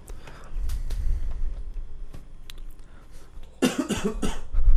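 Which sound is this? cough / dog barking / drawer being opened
cough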